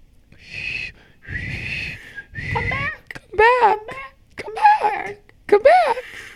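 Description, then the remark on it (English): A person imitates a whistle being blown with their voice: three breathy, hissing blasts followed by three shrill, warbling vocal toots, each sliding up and down in pitch, fairly loud. “Well, and why do they never have a whistle? Oh. Their voice is the whistle.”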